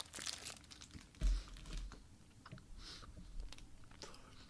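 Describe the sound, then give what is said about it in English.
Close-up chewing of a Tasty Cake Butterscotch Crimpet, a sponge snack cake with butterscotch icing, chewed right on the microphone, with wet mouth sounds, a few crinkles of a wrapper and a low thump early on, continuing steadily without any talk. “Is this good podcasting? Me chewing on the microphone?”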